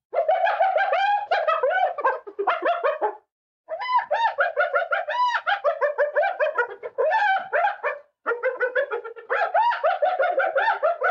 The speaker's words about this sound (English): That was not Anna, but that is what hyenas sound like.